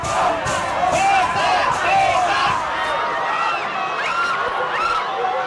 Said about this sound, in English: Well, there's a full-scale assault on the gates here. They're saying, kick these companies out. They're saying, this country does not belong to Sampoerna or British American Tobacco or Philip Morris. It's our country, it's Indonesia. Let us in.